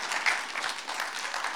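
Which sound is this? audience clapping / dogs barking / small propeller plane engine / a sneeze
audience clapping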